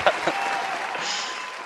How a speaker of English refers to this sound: Crowd loving it.